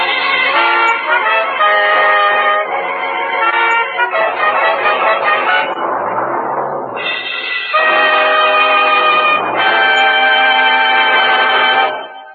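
A ship's whistle blows loudly outside a ship's cabin in long, sustained, chord-like blasts. It pauses briefly around the middle, then sounds again for several more seconds before cutting off. No voices are heard.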